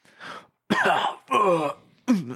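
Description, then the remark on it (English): Four harsh, raspy coughs from a man just coming to with his eyes still closed, fairly loud, each burst separated by brief pauses, rough and throaty, almost like throat clearing, with no talking around them. “He hasn't even opened his eyes yet, and he just starts coughing.”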